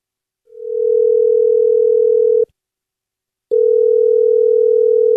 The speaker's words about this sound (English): I'm dialing her phone number right now. Hopefully she answers.